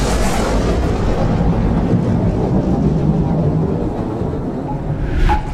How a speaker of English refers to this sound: And then another burst of thunder rocked the chamber.